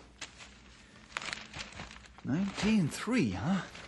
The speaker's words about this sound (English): I'll just put this stack of papers over where we can spread them out.